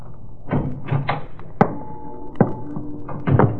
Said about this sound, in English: I edged closer and then... I banged against the steel drum and the noise it made shattered the silence.